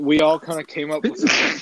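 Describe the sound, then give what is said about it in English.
A person talks briefly, then a single sharp, breathy sneeze from allergies bursts out at the end, loud and noisy, cutting off the speech. “Like, I have allergies.”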